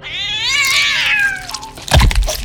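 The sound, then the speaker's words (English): A fat male house cat, trying to take down a buck, lets out a loud, drawn-out yowl that rises and then sags over about a second and a half, followed abruptly by a sharp, crackling snap. “let out a yowl, followed by a god-awful snap.”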